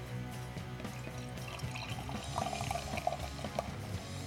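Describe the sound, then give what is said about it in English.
Beer glugs and splashes steadily from a bottle into a glass, with a faint rising gurgle as the glass fills and a foamy head rolls up, continuing for a few seconds without any talking. “Yeah, let's pour this thing out here.”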